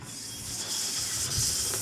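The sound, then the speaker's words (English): A voice imitates a snake, making a steady, breathy hiss with a faint rattling texture that holds for about two seconds, moderately loud. “Snake, snake, get back, there's a snake.”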